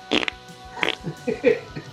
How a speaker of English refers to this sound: That was a triple shot of farts. That shit's tight. I'm impressed.